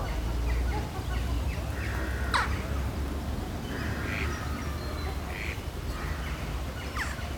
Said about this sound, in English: Normally when we hear something, we jump to a story with it. We hear a duck and we jump to a story and a picture of a duck. What if we just go, duck?